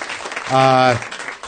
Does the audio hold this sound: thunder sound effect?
no